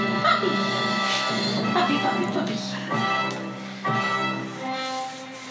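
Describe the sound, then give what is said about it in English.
A puppy whimpers and yips in a run of high, whiny cries with a few sharper bursts, fairly loud and nearly continuous for several seconds. “It's like you're straight up confusing our puppy.”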